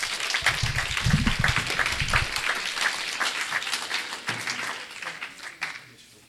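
An audience breaks into sustained applause, a dense wash of many hands clapping that holds steady with a low murmur early on, then thins out and fades over the final second.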